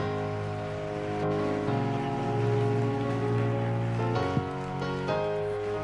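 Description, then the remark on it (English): A church audience claps steadily in a dense, sustained wash to welcome a preacher, with held keyboard chords ringing underneath and shifting pitch a couple of times before the applause carries on. “Let's put our hands together for the man of God.”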